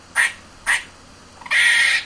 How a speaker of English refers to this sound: And yes, that is the actual sound of a squirrel barking.